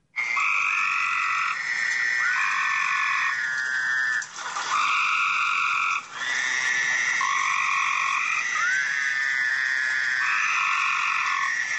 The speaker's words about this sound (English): Well, the one that's going, wah, those are toads. And the really loud thing is a little tree frog. They're little bitty green things.